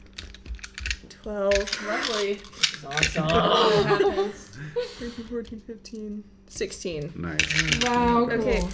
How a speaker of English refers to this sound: Double fistfuls of dice.